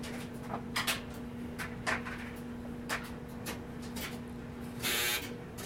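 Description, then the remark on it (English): A clothes dryer hums steadily with scattered knocks and clicks from tumbling, then a brief louder burst of noise as the machine is switched off and the hum fades. “They have to turn the dryer on so there's dryer background noise in your thing. Yeah, I guess I should turn it off.”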